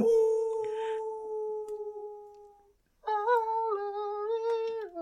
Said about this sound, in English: That's the voice of every dead wolf you just shot.